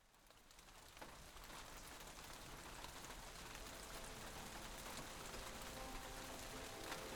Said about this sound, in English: So it's a pouring, raining day, isn't it?